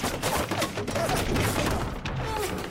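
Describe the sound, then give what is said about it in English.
Wooden siege ladders creak in short, groaning pitch glides as they are raised against a wall and defenders shoot orcs off them, half buried under a constant, loud din of battle: clattering sword and shield impacts, whooshes, thuds and crashes filling the whole clip without pause. “That wonderful creaking as they're trying to shoot all the orcs down off the ladders.”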